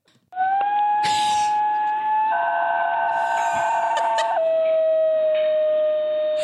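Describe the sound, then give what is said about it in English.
A dog sings in a long, unbroken, operatic howl, holding one steady pitch for several seconds with a wavering, richer stretch in the middle before settling back. There is no talking. “Opera singers, apparently, have expressed a particular interest in this vocally skillful canine.”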